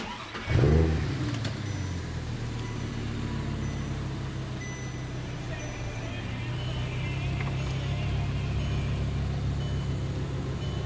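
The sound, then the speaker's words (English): A car engine cranks and catches with a sharp, loud burst, then settles into a steady, rumbling idle that continues for several seconds. “Let's fire it up and open the hatch.”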